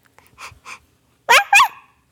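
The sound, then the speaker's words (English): A young girl's voice imitates a puppy dog: two soft, breathy pants, then two loud, high-pitched yips in quick succession. “Okay, my daughter is now Rooney the puppy dog.”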